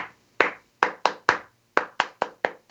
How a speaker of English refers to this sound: So I've just put a little gentle rhythmic clap in there, but kept it fairly muted so that when it's recorded, it doesn't send the sound levels all over the place.